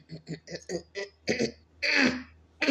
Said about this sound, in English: I'm clearing my throat. Excuse me.